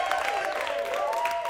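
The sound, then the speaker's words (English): An audience at a gig applauds the pianist in a steady, dense wash of clapping, with a sustained cheer or whoop running through it, no single voice standing out. “Please stop clapping.”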